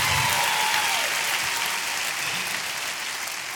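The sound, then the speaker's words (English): Steady, dense applause from a church audience welcoming the pastor fills the whole clip, a sustained wash of many hands clapping at a fairly loud, even level with no voices standing out. “Come on, clap your hands for Pastor Mike.”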